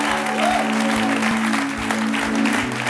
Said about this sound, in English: That was a really pathetic hand clap. Dat was, kom op, dat was zielig.